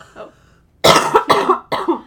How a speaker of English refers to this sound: Oh. Cut out my cough. Oh, I'm sick.